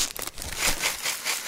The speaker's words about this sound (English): How about a bag of crisps to add some crunch?